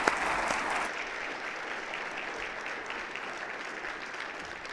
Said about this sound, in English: May God bless you all. Thank you, church. Give them a round of applause.